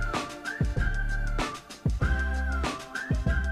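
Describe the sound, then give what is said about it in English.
A whistled melody of sustained notes with rising slides carries over a song with a thumping low beat and drum hits. The whistling stays prominent and continuous, with no voices. “That's a lot of whistling.”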